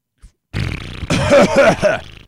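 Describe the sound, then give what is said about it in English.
A voice imitates a fart with the mouth, a buzzy raspberry lasting under two seconds with a few wavering pulses toward the end, loud, preceded by a tiny click. “Make a fart noise with your mouth.”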